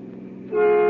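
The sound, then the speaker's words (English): A car engine rumbles as a car driven by a woman rushes at top speed toward another car on the left side of the road on an extremely warm afternoon, then a loud, steady car horn blares out abruptly and keeps sounding as the short clip ends. “Nick and Patsy meet a car rushing toward them at top speed on the left side of the road”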